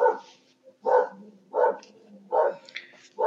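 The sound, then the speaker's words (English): A dog barks repeatedly at garbage men outside in a steady rhythm, five loud, sharp barks spaced about two-thirds of a second apart, clear with no talking over them. “So my dog is saving us from some no doubt murderous garbage men outside.”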